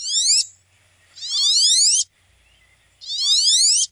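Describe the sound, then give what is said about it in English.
A male duck gives three shrill, buzzy calls, each a high, rasping burst lasting about half a second to a second, separated by short silences, with no voices present. “It's just this really shrill, buzzy, zwee, zwee, like that.”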